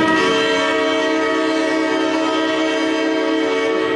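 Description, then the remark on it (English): A loud, sustained football stadium siren at the former Football Park in Adelaide, with a rich stack of steady harmonic tones, sounding much like a train horn, holds at an even volume for several seconds with no talking. “That paints a picture in my mind of a train going past Alphabet Stadium in Geelong.”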